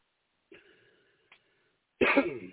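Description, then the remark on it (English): A soft, breathy throat sound trails off and a tiny click follows. Then a sudden loud, harsh cough bursts out from a person who has just finished reading a poem aloud, with no talking. “I had to cough like a third of the way, 2/3 of the way through.”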